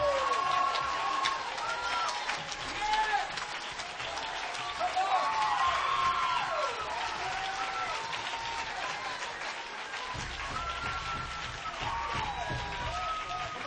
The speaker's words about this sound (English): Come on. Raise your hands again. Lift your voice again. Dance one more time. Give God one more hand clap.